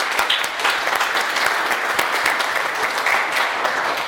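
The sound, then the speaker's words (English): A large group claps steadily for several seconds, a dense, even wash of many hands applauding together with no one speaking over it; a church audience applauding its members who taught this past year. “And give yourselves a round of applause for that.”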